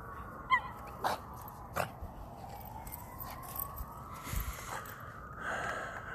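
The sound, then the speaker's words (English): A small female dog that dislikes other small dogs barks a few times in short, irregular bursts, moderately loud, while a faint wavering siren-like tone drifts in the background. No one speaks. “She just doesn't like other small dogs. She's fine with big dogs.”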